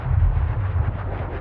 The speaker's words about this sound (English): Explosions rip through the air like sharpened bayonets to a terrified soldier's backside. The sky is thick with black smoke and ash from the fires of war that burn ferociously in every direction.